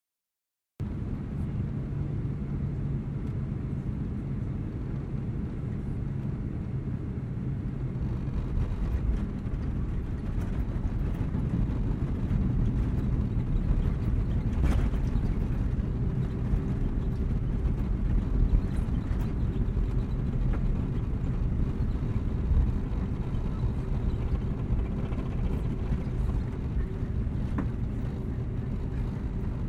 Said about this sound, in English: Welcome to Accra. You may unfasten your seatbelts, but please remain in your seats until the plane has come to a halt.